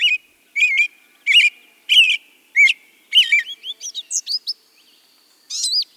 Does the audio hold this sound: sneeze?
no